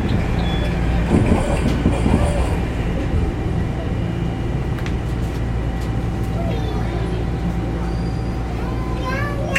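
A Toronto TTC subway train rumbles steadily along the tracks between stations at 1:40 a.m., a loud continuous low roar with rattling and faint squeals, heard from inside the car, with no one speaking.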